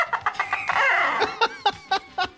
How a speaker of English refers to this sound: Chicken.